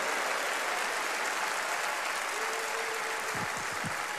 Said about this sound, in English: Everybody take a praise break and clap your hands and say, I'm still in love with praise.